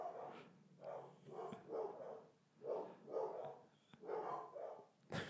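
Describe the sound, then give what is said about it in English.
Dogs bark repeatedly in a steady series of loud woofs, set off by a knock on a table, roughly eight barks spread evenly across a few seconds, with a sharp knock or click at the very end. “So you think they're barking at nothing because you knocked on the table.”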